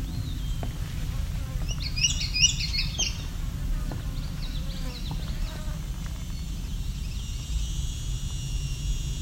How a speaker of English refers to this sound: Sounds like probably an indigo bunting here. Just singing a partial song.